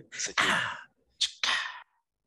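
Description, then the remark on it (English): A stifled yawn, heard as two breathy exhalations, each starting with a short sharp intake and then trailing off into a long airy sigh, with no talking. “I saw a little yawn you stifled right now.”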